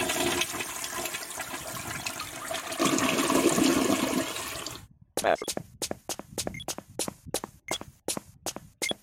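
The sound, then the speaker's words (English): A toilet flushes with a loud rushing swirl of water for about five seconds, then cuts off abruptly, followed by a run of evenly spaced sharp taps, like quick footsteps. “Toilet. And then re-interact, flush it.”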